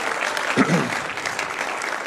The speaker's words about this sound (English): One more time, can we just give the Lord a good hand clap of praise?